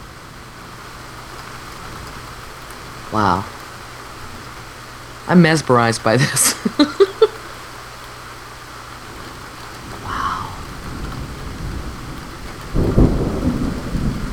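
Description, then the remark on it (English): Steady rain hisses outside a window, recorded with the microphone placed by the window, with a low rumble of thunder rolling in near the end. A few short bursts of quiet speech break in over the downpour. “Is that rain? Yes.”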